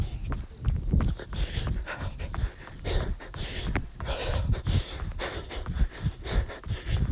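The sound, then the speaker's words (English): A dog draws near, its quick, irregular footfalls and panting breaths heard amid steady outdoor background noise. “Here comes a dog. Wants to yell at me.”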